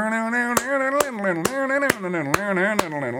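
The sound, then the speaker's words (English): Six sharp, crisp handclaps land on a steady, evenly spaced beat, clapping along on beats one and three as an audience does at a bluegrass hoedown, while a voice sings or hums a wavering, bouncy melody underneath without words. “If you hear a bluegrass hoedown and the audience is clapping along, it's going to sound like...”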